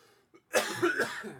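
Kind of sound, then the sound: human body sound, cough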